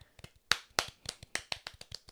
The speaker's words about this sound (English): But insert the hand clapping. Not going to do it. I'd rather have the cheap golf clap.